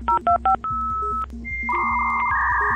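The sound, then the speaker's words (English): A 1990s dial-up modem dials a quick run of three touch-tone beeps over a telephone line to get internet access, then a steady tone gives way to warbling handshake tones, loud with no voices. “You would have had to get internet access from somewhere, and these were the days when you were using a modem.”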